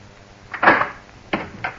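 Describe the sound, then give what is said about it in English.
A door being opened: a brief rattling, slightly creaky burst, then two short, sharp clunks a moment apart, with no one speaking. “Darling, let me in. Please open the door.”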